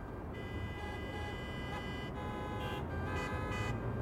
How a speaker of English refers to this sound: Is the traffic always this bad? It's called rush hour.